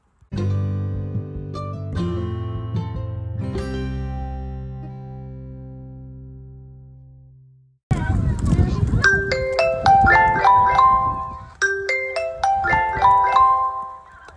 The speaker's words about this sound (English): Shoot, the bell rang! You gotta hurry!